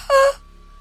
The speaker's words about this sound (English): You two, Canute and Mathilda, you're alone when you hear the howl.